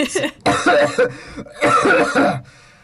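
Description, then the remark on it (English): A voice imitates harsh, wet coughing and hacking as a character pops up from the water, with two long sputtering bursts and a short one up front, loud, like someone choking up water. “So Juilliard, like, pops up from the water and starts, like, coughing and hacking up, like, some water.”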